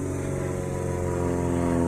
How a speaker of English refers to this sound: There's a plane going overhead. These are little planes. Little two wheels hanging in the air. Two little wings and just a propeller.